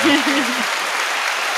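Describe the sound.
Steady applause, a dense hiss of clapping that runs the whole clip at an even level, with a man's voice briefly heard over it at the start.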